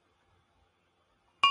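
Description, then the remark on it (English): Near silence, then right at the end a single loud, bright metallic clank rings out as a bell goes rolling, cut off abruptly. “And the bell went rolling, clanking as it went.”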